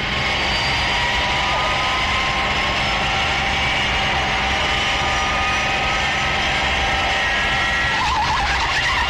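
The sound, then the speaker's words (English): A loud, sustained roar of a large aircraft rolling fast down a runway, with a steady high-pitched screech of tyres skidding under heavy braking throughout, without pause. “I'm applying brakes down here.”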